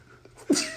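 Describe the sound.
A person mimics a single sneeze: a quiet intake followed by one sharp, breathy burst that trails off, fairly loud.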